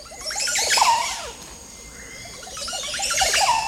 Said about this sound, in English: Perched beside its nest is the author of those gurgling tones, a Montezuma Orapendula.